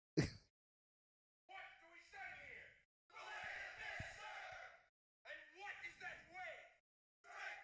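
A man lets out loud, strained battle cries, four drawn-out forceful shouts with short pauses between them, after a brief sharp smack at the start.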